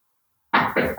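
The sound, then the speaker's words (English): Three quick, loud knocks on a bedroom door that has a baby lock on it, from someone outside trying to get in, in a steady rhythm after a moment of silence, with no voices. “Who's knocking?”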